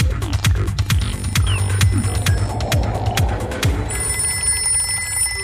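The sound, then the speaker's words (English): A telephone rings insistently in the cartoon segment Run, Pinky, Run, its bell clattering in quick repeated bursts over a low, steady throbbing hum, fairly loud, with no voices. “Phone!”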